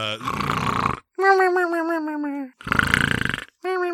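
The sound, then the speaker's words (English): A tape recorder plays a voice mimicking snoring for comic effect, like a 1920s comedy routine, alternating rough, rattling inhales with wavering, whistly hummed exhales in a steady back-and-forth rhythm, repeated twice. “It's just a tape recorder with him snoring on it. It's not convincing snoring.”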